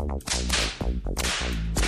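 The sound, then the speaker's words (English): About four sharp, crisp slaps crack out at uneven intervals, loud, over a dense, sustained musical backing that keeps playing underneath. “Slap your friend!”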